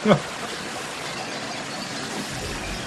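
Steady hiss of water pouring continuously from an American Standard shower with a well-sealed door, a broad even rush with no breaks, opening with a brief vocal sound before the water carries on alone.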